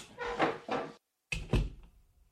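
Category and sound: household object, door opening and closing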